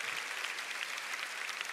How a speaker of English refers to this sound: Oh, won't you clap your hands and give God a shout of praise?